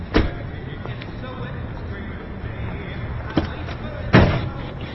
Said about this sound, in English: I know you didn't think anyone would catch you, but you just slammed your door into my car.